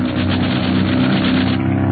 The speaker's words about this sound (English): The two planes are engaging in an aerial dogfight, and Barney is hard put to outmaneuver his enemy.